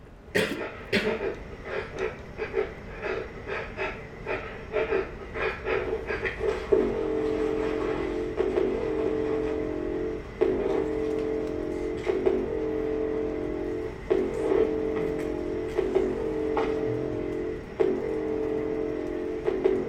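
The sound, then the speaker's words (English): Heavy, rhythmic breathing: harsh, close breaths repeat about every two seconds over a steady low drone, dense and loud, with no talking. “We're going to try the breathing thing one more time.”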